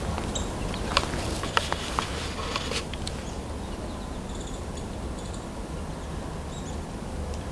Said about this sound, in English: Several American goldfinches here. There's also downy woodpecker, red-bellied woodpecker, Carolina wren.